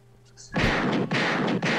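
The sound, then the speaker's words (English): After a moment of near silence, loud gunshot sound effects erupt in a dense, roaring barrage, briefly dipping twice before booming on, unbroken. “Gunshots for the second unit once again.”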